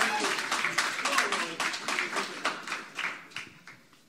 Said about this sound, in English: So well done. Go on, give him some applause for getting those.